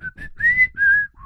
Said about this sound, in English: How about the synthesized whistle, though?